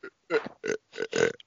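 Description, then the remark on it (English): A loud burp rumbles out in several croaky, stuttering pulses over about a second and a half, with no talking around it. “That burp I just is better than this fucking movie.”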